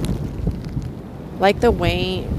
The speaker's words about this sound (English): And hopefully you can hear what I'm saying through the rain and the ocean waves.